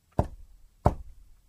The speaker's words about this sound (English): led 12-pound-a-head Ghostbusters into a stable and asked a spirit to knock twice in an answer to a question. You know, are you there?